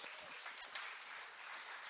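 A round of applause from a crowd for a reader who has just finished a Bible reading, dense steady clapping that stays fairly loud for a couple of seconds with no voices over it.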